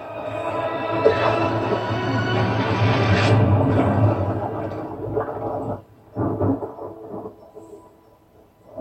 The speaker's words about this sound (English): But seismic waves are now slowly shaking the whole region, causing water to slosh and churn. The Tanis' strange currents in the river give a hint of what is still to come.